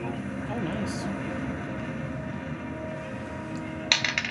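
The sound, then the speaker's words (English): A ten-sided die is rolled as a 1d10 damage roll and clatters onto a tabletop, a sharp click followed by a few quick, fading rattles, arriving suddenly at the end after a stretch of low, steady background hum. “Okay, 1d10 plus.”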